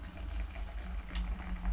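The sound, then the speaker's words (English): Soft, steady fizzing of carbonated Coca-Cola Dream World soda, a faint crackling hiss over a low rumble, with one brief sharper burst partway through. No one speaks. “I like the sound of fizz and shit.”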